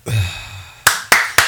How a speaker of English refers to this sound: See, the clapping is going to ruin it's going to fuck up the recording. Doesn't it?